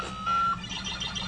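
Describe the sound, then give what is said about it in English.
A short electronic sound from an iCade arcade cabinet running, its splash screen and player one start: a steady mid-pitched tone holds for a moment, then gives way to faint, high chirpy blips over a low hum, with no talking. “That is the sound of the iCade actually running now.”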